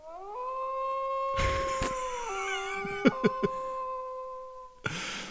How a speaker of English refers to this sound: So, of course, they had to put a howl in because, you know, werewolves and that. They had to make it most legit as possible.